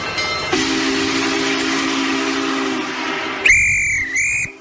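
A steam train chugs with a steady hiss and rumble, then its whistle blows loudly twice in quick succession, the second blast cut off abruptly. No one speaks.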